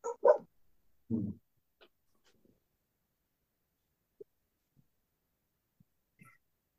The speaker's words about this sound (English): Uh-oh, the dogs.